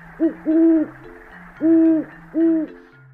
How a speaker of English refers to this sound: Owls, they hoot.